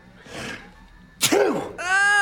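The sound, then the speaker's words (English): A person sneezes once loudly: a breathy inhale builds up, then an explosive burst, followed right after by a short voiced sound. “you sneezed all over us.”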